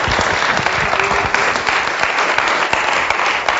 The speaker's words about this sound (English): Come on, a round of applause.